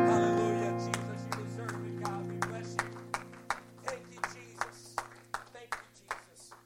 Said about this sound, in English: Can we give one more hand clap of praise unto the Lord as you're seated this morning?